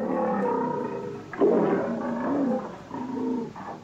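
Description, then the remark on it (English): A lion in a film roars and growls loudly, one long rumbling vocalization that swells several times over a few seconds, with no one talking. “Oh, that lion's back.”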